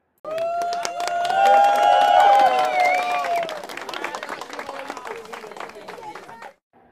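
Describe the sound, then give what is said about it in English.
An applause sound effect: a crowd bursts into loud, dense applause with whoops and cheers rising over it at first, then the clapping thins and fades before cutting off abruptly after about six seconds. “Cue in the applause.”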